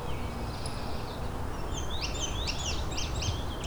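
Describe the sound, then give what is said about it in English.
A songbird sings a quick series of high, sweet, slurred phrases over a steady low rumble of outdoor background noise, an indigo bunting's bright paired notes. “Here's an indigo bunting.”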